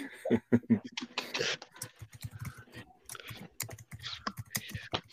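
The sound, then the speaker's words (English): Rapid typing on a computer keyboard as a man types in a chat, a dense, irregular stream of sharp key clicks that runs without pause for several seconds, fairly loud. “He's typing something smart aleck.”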